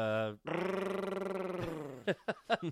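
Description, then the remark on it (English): A person imitates a chainsaw with their voice, a buzzing, revving drone sustained for over a second with a pulsing rattle, followed by a few short bursts of speech. “That was the weakest chainsaw I'd ever heard.”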